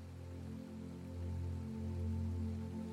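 A steady, continuous rush of flowing water with a deep, low rumble underneath, holding at an even level throughout with no voices.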